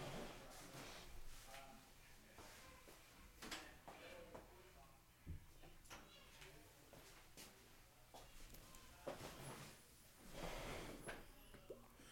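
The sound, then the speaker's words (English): A door is pushed shut amid a series of soft clunks and rattles of handling, fairly quiet, with light shuffling and rustling in between. “I'm going to close this damn door.”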